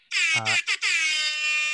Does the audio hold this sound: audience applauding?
no